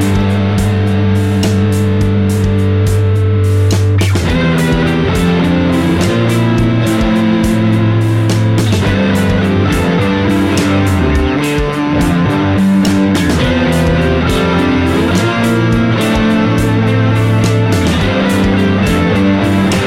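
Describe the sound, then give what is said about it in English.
An electric guitar played through a KMA Worm 2 effects pedal, the only pedal in the chain, into a Neural DSP Corey Wong clean amp preset in a DAW with no post EQ, reverb or delay; loud, with thick sustained chords and rhythmic strummed accents ringing continuously. No voices. “The Worm 2 is the only effects pedal in the chain.”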